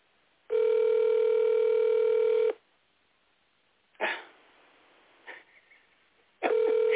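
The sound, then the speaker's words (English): A phone line rings out on an outgoing call: a steady two-second ringback tone, a long pause broken by a couple of short thumps, then the ring starting again, with no one picking up. “She was celebrating her birthday, so she ain't even answering the phone.”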